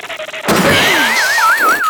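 A sudden loud crash bursts in after a quiet start, followed by a wobbling, warbling tone that wavers up and down like a cartoon sound effect, the clatter settling as it rings out.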